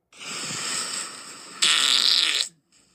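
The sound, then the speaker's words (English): A long, sputtering fart sound effect plays alone, rasping steadily before jumping to a louder, brighter blast near the end and cutting off abruptly. “Josh, are you playing fart sound effects? Yes, I am.”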